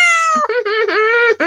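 A loud, drawn-out angry cat yowl, rising and wavering in pitch with a few brief breaks across its length, and no other sounds around it.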